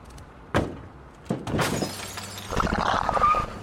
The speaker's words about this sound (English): I spun around in my seat. An alien creature lunged at the trunk of our car.